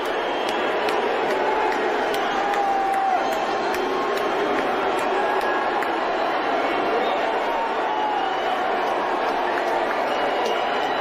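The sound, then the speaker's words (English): A large crowd at a Dave Chappelle show roars steadily with mixed booing and cheering for Elon Musk, a loud, dense wash of many voices that holds without a break and no single speaker standing out. “He starts claiming the people are booing are in the cheap seats.”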